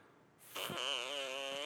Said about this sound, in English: We got a fart machine from my dad.